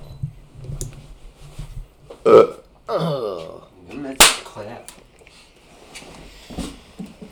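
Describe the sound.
A loud burp rumbles out for about half a second, bracketed by a couple of sharp smacking clicks, with faint murmuring voices in the background.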